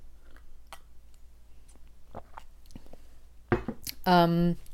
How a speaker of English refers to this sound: I have some coffee with me today, so you might hear me taking a few sips from time to time.